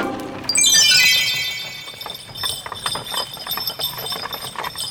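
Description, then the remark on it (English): Horse hooves clip-clop in a steady rhythm while shiny silver bells on the horses jingle and ring over them, loudest at the start, with no voices. “The horses need bells, shiny silver bells.”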